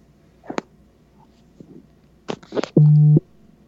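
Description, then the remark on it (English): A phone vibrates from incoming messages, once with a loud, steady buzz lasting about half a second, preceded by a few scattered soft taps and rustles. No one speaks. “What keeps vibrating?”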